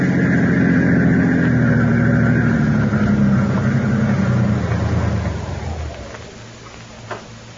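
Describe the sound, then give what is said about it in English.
A car engine hums loudly and steadily as it drives, its low drone fading away over the last couple of seconds, ending with a faint click in near silence. “I think I will go for that drive.”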